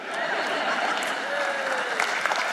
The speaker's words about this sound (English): You gotta clap, man.